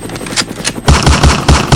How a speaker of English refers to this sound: stop shooting! Captain, we are drawing fire. We are under attack.